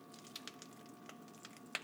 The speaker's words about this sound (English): I can hear it snap, crackling, and popping as it said it would. The box doesn't lie.